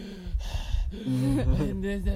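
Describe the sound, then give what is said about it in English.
A voice imitates a woman breathing heavily on camera, with loud, labored breathy huffs that blend into strained voiced exhales over about two seconds. “I called her Heavy Breather because that's what she would do in the camera”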